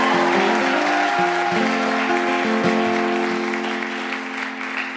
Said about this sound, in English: I want to give it out one more time for the incredible founder of the feast, Deborah Frances White. Please give her a massive round of applause.